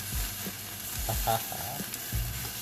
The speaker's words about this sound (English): Ooh, it's boiling. Yeah, you probably can hear it.